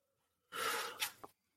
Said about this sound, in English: Sorry, I'm just coughing here. Stand by.